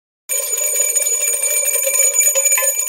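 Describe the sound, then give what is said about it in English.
A bright metallic bell rings continuously and rapidly as the intro to a 'Two Bell Tuesday' segment, an alarm-clock-style jangle that starts abruptly after a brief silence and stays loud and steady throughout, with no voices. “It's a Two Bell Tuesday.”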